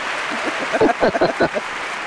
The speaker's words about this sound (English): So. They're excited. Cheering. They're cheering for you.